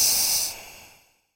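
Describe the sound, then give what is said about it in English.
A single breathy hiss, bright and airy, made by a voice imitating the hiss of a Woggly, a pale blue, torus-shaped creature with two winky eyes. It is strongest for about half a second, then trails off and fades to silence. “Wogglies say, hiss!”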